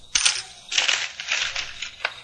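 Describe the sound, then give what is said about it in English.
Crisp crackling of a newspaper being bought and unfolded, several rustling bursts over about two seconds, ending with a short sharp snap. No one speaks. “I want to buy a paper to see if they spelled your name right.”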